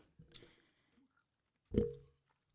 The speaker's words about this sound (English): I can hear myself, like, chewing in the microphone. Like, I can hear myself, but I don't know if you guys can hear me, and I hope not, because it's, like, squishy, squishy.